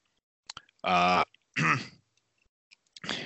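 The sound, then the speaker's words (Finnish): A few rough, throaty coughs and throat-clearing noises, two loud bursts in quick succession followed by a pause and another starting, with small clicks before them. “Vähän yskityttää.”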